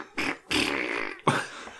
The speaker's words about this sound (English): but then they did the fart version.